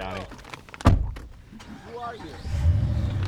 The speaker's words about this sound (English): As soon as the clock hits one, they hop in their truck and speed back towards the Porcupine Mountains.